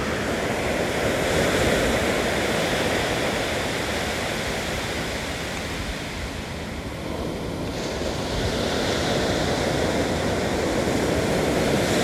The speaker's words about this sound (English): Imagine this water is going through your brain. Here we go.